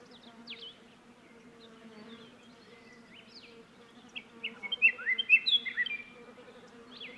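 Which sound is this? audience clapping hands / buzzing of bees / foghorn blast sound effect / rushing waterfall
buzzing of bees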